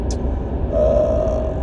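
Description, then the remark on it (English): Steady, heavy low rumble of a car cruising at speed on a highway, heard from inside, with a faint whining tone creeping in about halfway through; no one speaks. “But I'm on the highway now, so I can't hear it at all, so that's good.”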